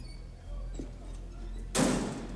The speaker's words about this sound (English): So when he shuts that door, can you open it back up?